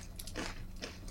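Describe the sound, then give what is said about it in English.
Crunchy chewing on smoky, slightly spicy crisp bar snacks, with two sharp bursts of crunching about half a second apart over a low steady background hum. “I'm worried about how noisy these are going to be. I'm going to eat over here. They're going to be quite crunchy.”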